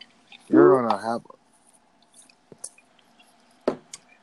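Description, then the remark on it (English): A short pour of Tanqueray gin into a glass, a brief gurgling splash rising in pitch as it fills, followed by two sharp glassy taps in otherwise quiet surroundings. “I'm going to pour myself another one.”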